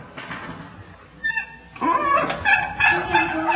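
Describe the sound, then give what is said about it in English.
A chicken clucks and squawks in a run of repeated calls, starting with a brief burst and then carrying on busily to the end, with no one talking. “What's that? The chicken is walking in.”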